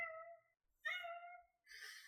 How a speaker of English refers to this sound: A small kitty walks by. It does not sound like a happy kitty.